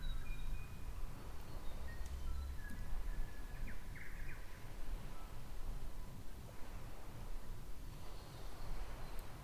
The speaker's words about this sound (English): You can hear the birds.